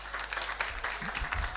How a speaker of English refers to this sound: It's only the guys that are clapping.